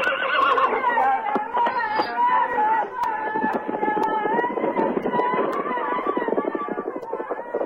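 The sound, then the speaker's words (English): Horses whinny and snort while hooves clip-clop steadily underneath as two Apache warriors bring horses, a busy, continuous mix of neighing and clattering steps that stays loud throughout. “Two Apache warriors brought horses for Billy and Jenny.”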